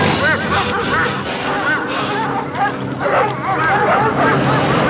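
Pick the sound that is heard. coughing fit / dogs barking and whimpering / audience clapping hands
dogs barking and whimpering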